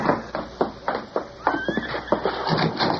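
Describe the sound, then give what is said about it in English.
Horses stamp and clop in an uneven rhythm of hoofbeats outside a cabin set back among trees as a man takes charge of them, with a brief whinny rising over them midway; no voices are heard. “A man stepped from the house and took charge of the horses.”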